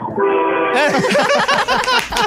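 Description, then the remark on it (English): A loud, blaring horn honks in a steady held blast, then breaks into a chaotic run of wavering, overlapping horn blasts that stay loud to the end. “I got some loud horns for you, too.”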